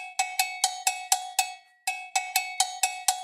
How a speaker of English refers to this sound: To quiet Judith, the bell was rung. The ringing of the Timberley bell in the middle of the morning was a signal of such ominous import that not only did it bring the Tomlinson men to the house